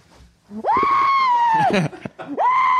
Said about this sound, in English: I mean, if he didn't have the pillow there, we would all be so loud. But also, how much better do you guys feel after screaming? I feel great.